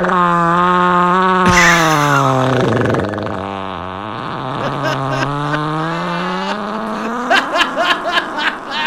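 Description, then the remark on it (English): A low, buzzy Harley-like rumble that sags in pitch, then climbs again as if revving, produced by a voice rather than an engine, ending in a few sharp, choppy bursts. “That sounds like a fucking Harley.”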